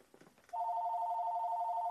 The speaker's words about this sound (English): And there's the phone call. I'll be right back, as expected.